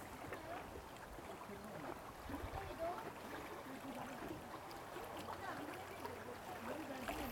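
flowing water

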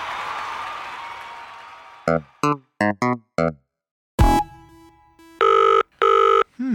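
telephone ringing

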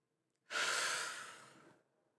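breathing out

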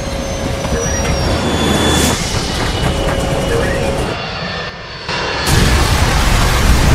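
airplane engines roaring

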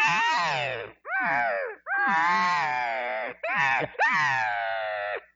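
elk cow call

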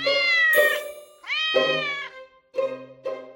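cat meowing

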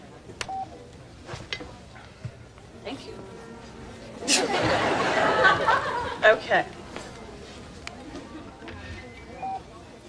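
dialing a telephone number

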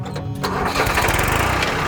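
tractor engine starting

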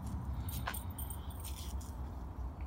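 keys jangling

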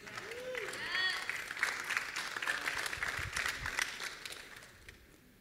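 audience applause

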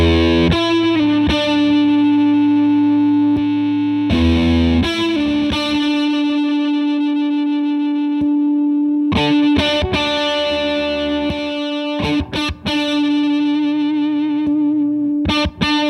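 guitar through distortion pedal

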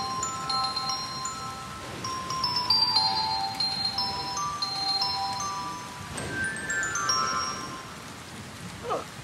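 doorbell ringing

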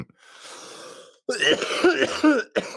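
coughing and throat clearing

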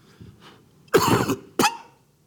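coughing

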